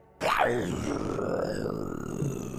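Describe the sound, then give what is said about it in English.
Wolves snarl and howl: a sudden rough growl breaks out, then a drawn-out, rumbling howl holds steady and loud for a couple of seconds. “But you do hear that snarling and howling of wolves is now immediately behind and in front of you, as you see four sets of eyes from the front all step out.”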